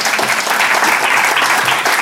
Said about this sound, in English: That is absolutely fantastic. Why don't you just clap or something?